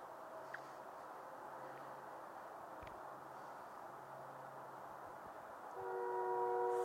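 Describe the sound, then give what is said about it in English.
A distant train rumbles steadily, then a long sustained horn blast swells in near the end and holds. No one speaks. “Yeah, that train should not be going on for that long.”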